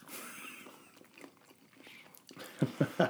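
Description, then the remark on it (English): Chewing with soft wet mouth noises, ending in three louder crunchy bites in a quick, even rhythm; no talking. “I'm going to cut some of that chewing out.”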